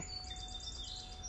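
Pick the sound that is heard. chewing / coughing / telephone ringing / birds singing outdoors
birds singing outdoors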